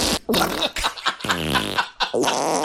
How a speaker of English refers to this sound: And this is me putting two farts that are in the key of F sharp on top of each other. So that's a fart chord, actually. I'm the first one to make a fart chord.